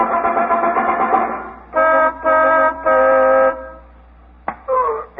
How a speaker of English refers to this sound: On the way to the station, Phyllis was going to drive off somewhere onto a dark street and honk the horn 3 times when the coast was clear.